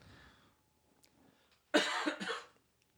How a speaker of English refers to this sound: Sorry. We don't have a cough button yet. Sorry. Dang it. We're working on it. I can edit all that out. Okay. So, I just coughed once.